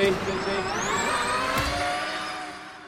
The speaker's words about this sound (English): Formula E is far quieter than Formula One because you don't have the noise of the petrol engine. But if you ask anyone who's actually been to a race, they are much louder than most people think. Whatever the car, what you hear mostly is the wind